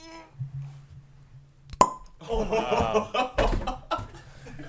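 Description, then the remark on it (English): A single sharp cork pop from a bottle of mead being opened, bright and sudden, followed by a burst of laughter and chatter from several people. “We were able to find a bottle of mead. It's not going to be a real pop and bottles.”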